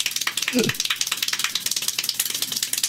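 Extremely rapid hand clapping during a record-breaking Guinness World Records clapping attempt, a dense, steady stream of sharp claps so fast they almost blur into a rattling, sizzling texture, continuing without pause throughout, with a brief low vocal sound near the start.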